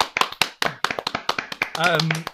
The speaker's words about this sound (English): And that is why this month, Donald Trump is getting the TW3 award. Give him a round of applause, boys. Woo, Donnie!